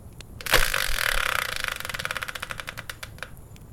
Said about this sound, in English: So let's bring in the Wheel of Fortune style spinner, give it a turn, and find out what today's topic will be.